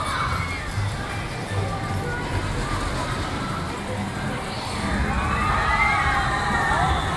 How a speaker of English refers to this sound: Here comes another train.